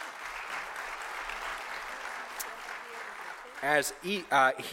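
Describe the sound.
An audience claps steadily in a dense, even wash of applause for several seconds, then a man's voice starts talking loudly as the clapping continues underneath.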